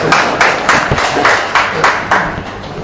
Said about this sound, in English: I was expecting an applause right now, so you might as well give it.